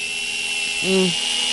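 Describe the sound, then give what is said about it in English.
A dentist's drill whirs steadily with a thin, high-pitched whine, joined midway by a brief lower tonal swell that fades after a moment. “The drill.”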